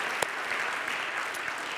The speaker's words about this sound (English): If you enjoyed praising Jesus, let's give him a round of just applause and glory right now. Amen.